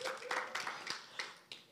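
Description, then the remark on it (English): A crowd at Freedom Church claps together for the church's sound technician in a brief, scattered round of applause. Bright, sharp hand claps with several distinct louder bursts stand out over a steady patter. “Let's give him a clap.”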